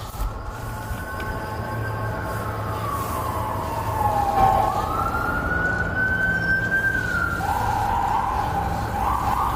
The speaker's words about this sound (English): As sirens sound in the background, is that your Bible?